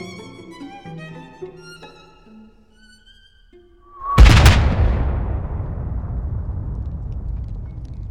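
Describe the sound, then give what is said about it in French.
After a few seconds of quiet tonal notes, a flat-trajectory artillery shell detonates with a flash in a single loud, sharp blast, followed by a long, low rumbling roar that slowly fades but lingers to the end. “Un éclair, une détonation. C'est un obus.”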